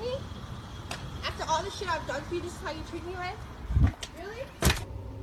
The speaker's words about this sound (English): Now she has just smashed my window, my rear windshield.